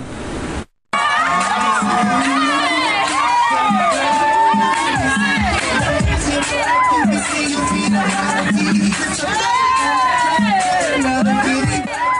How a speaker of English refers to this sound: An unidentified officer joined the crowd while they were dancing to ….